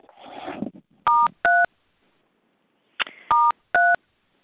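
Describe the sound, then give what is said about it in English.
Telephone keypad tones on a group phone call: two pairs of short, steady dual-pitched beeps as star 1 is pressed to unmute, each pair quickly pressed in succession, with a brief rustling noise before each pair and silence between. “I now invite everyone who cares to please press star 1 to unmute so we can say the Serenity Prayer together.”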